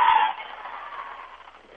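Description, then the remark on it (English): Whistling County fans at a basketball game hoot and holler while the referees confer, a loud, high burst that settles into a steady crowd roar, gradually easing over about two seconds. “Some hooting and hollering from the Whistling County fans as the refs are going to converse.”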